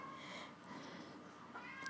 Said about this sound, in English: Well, the dog is right here, then the cat is crying. Oh, and, kitty.